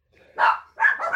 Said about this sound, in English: And so dreary weekend that it is, we're here extended dogs here for the weekend. Welcome, dogs.